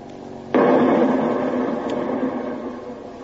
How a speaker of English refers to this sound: Depth charge, 40 feet. Depth charge, 40 feet. Ready, sir. Release! Depth charge, 30 feet. Depth charge, 30 feet. Ready. Release! Say, aren't those things liable to tip us over? I can feel our boat jump up every time one goes off.